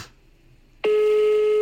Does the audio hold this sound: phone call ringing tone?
yes